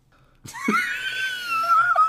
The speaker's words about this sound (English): You like gasp for air. Did you just die for a second?